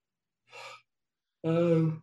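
A single loud yawn: a short airy intake of breath, a brief pause, then a drawn-out, voiced groaning exhale lasting about half a second. No talking.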